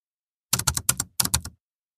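A short burst of quick keystrokes clacks on a computer keyboard, a run of about four taps, a brief pause, then three more, crisp and close with no voices.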